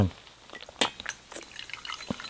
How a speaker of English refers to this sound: Yeah. Cool. Like, I'll put some more hot water. I'm going to double brew this shit today, just to see what happens.